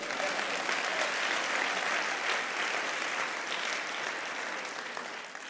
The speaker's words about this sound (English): Could you clap your hands?